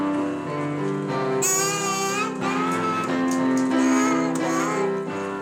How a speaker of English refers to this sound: daddy and daughter duet on the keys, along with encouraging mummy that produces some lovely piano and vocals. Sing a bit more.